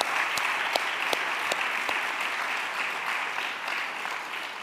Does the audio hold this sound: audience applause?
yes